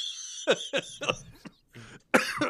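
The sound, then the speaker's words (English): A run of about five harsh coughs in quick, uneven succession, with a short pause before a final louder hacking burst. No one speaks. “And the movie starts coughing.”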